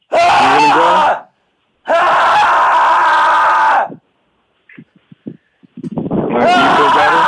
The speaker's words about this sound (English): Did it feel good to scream or just weird? Yeah, no, it felt good. I'm a very loud person.